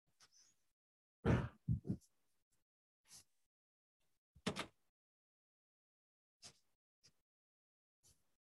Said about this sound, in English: I'm just going to close the door.